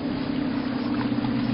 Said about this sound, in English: Well, no need. There's a patrol boat coming right for us.